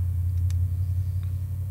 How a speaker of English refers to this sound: Truck outside.